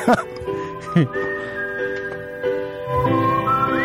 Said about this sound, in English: Oh, okay. I have a song. It's from 1978, and it actually starts right in with whistling.